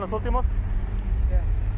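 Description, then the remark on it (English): A steady, low rumble of hundreds of idling and slowly moving cars inching along Cesar Chavez Road in San Juan, Texas, just outside McAllen, continuous, with brief bits of a voice cutting in over the engine drone. “In San Juan, Texas, just outside of McAllen, hundreds of cars inch along Cesar Chavez Road.”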